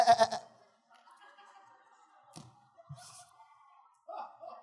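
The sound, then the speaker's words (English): A person makes a loud, wavering goat-like bleat at the start, followed by quieter murmuring and a faint second bleating cry near the end. “And it almost sounded like a goat.”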